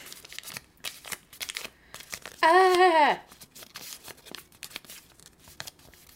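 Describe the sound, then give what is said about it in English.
Crackly paper tearing and crinkling in quick irregular bursts as a paper tube holding an Otter Pop frozen treat is opened, with a short sustained voiced sound partway through that slides down in pitch. “Got a paper tube.”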